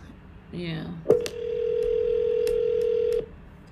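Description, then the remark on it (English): A brief burst of voice, then a single steady telephone ring tone hums for about two seconds, clear, with faint line clicks around it before cutting off, as a call-in phone line rings before a caller connects. “Let's go back to the phone lines.”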